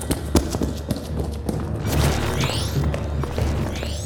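Muffled booms and heavy thuds from multiple explosions, with a fire, go off at irregular intervals over a constant low rumble. A few faint rising whooshes pass through, and no one speaks.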